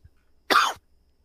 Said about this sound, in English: I had to mute you. I was coughing.